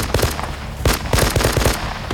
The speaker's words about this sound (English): But Clyde is already running for the car, turning to fire one last burst as the men climb in.